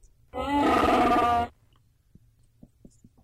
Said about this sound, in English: Wookiee. Chewy Roar. Chewy Roar. Oh, Wookiee. Chewbacca the Wookiee. Chewy Roar.